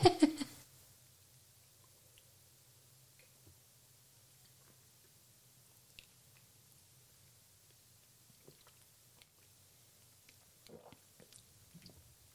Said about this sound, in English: Now, when you take a sip, mm-hmm. you know, to chew, you know, just let it flow through your mouth and try not to choke.